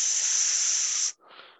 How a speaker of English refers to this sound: Oh, sorry. Was that the snake? Yeah. Was that a snake I just heard?